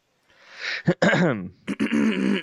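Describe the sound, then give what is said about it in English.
A person clears their throat a few times in a row, fairly loud: a breathy rasp, then sharp guttural bursts and a rough voiced rumble, with no words spoken. “You at home can also clear your throat.”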